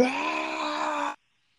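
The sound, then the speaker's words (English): A single loud, harsh, sustained scream of mock pain, delivered in a gritty screamo style and held steady for about a second before cutting off abruptly into silence. No talking. “Oh, I screamed.”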